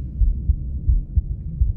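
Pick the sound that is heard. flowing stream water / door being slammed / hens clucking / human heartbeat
human heartbeat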